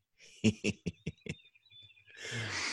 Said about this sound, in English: Here are some birds for you.